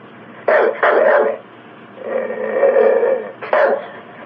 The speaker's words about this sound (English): The dog barks, but the man tells him to calm down.